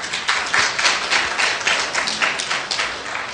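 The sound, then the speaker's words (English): Steady audience applause, a dense crackle of many hands clapping at a fairly loud, even level throughout, with no voices over it. “But if you're going to applaud every time I say something smart, you'll be applauding the whole afternoon.”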